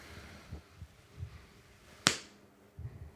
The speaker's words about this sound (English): All right, are we ready? Somebody do a big clap in front of the cameras, like the mic can hear.